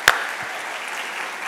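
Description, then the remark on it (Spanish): A crowd claps steadily for those who graduated, a dense wash of many hands with one sharp clap standing out at the start, sustained and fairly loud throughout with no voices. “Vamos a dar un aplauso a todos los que se graduaron.”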